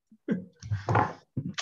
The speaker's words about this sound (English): Cracking open a big old water bottle.